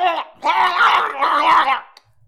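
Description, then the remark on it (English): A voice imitates a monstrous gurgling scream: a short rasping cry, then a longer strained, wavering howl with a throaty gurgle, loud, ending abruptly. “Yeah, the three of you now hear the gurgling getting like scream gurgling.”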